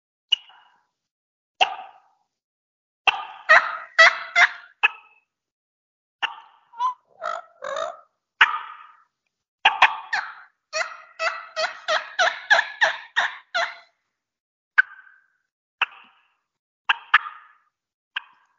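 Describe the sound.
A person imitates turkey hen feeding calls on a mouth call, as if hens are walking around and feeding in the woods: soft clucks and purrs in irregular bursts and rapid clusters, fairly quiet, with brief pauses between phrases and no talking.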